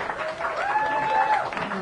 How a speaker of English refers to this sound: Well, first of all, give them a round of applause, right? Come on, get a little psyched up here.